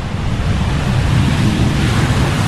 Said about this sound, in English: I'm just going to pause. I'm going to put a plane noise in here.